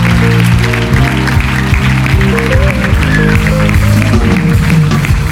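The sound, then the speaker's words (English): A church audience claps their hands in praise to the Lord, a dense, sustained wash of applause over loud, steady music with a deep bass line. “Before you sit back down, would you put your hands together and give the Lord a hand clap of praise?”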